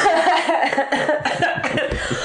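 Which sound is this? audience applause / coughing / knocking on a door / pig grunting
coughing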